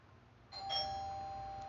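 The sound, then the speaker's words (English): A doorbell chimes on its own: two quick bright tones in succession, then a clear ringing note that lingers and slowly fades over a low background hum. “Oh, someone's at the door while I'm doing my podcast, but luckily my mom is coming to take care of that.”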